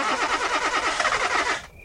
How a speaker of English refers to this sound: And finally, in the Colorado moonlight, we saw my car, our vessel, for a safe passage home. I gleefully inserted my keys into the ignition and cranked the engine.